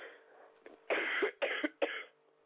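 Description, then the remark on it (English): A fairly loud burst of coughing: three harsh coughs in quick succession, preceded by a faint throat sound, with no talking around them. “I do excuse me for the coughing.”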